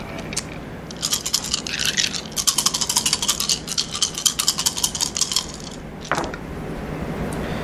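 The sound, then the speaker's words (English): Seven dice rattle rapidly for a few seconds in a dense stream of sharp clicks, then a final clatter lands as they come to rest. Nobody speaks. “Ooh, oh my god, I am rolling so freaking hot.”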